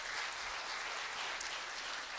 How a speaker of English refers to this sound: Absolutely, you can applaud for them too.